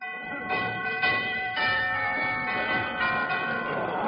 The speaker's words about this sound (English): I'll ring the doorbell.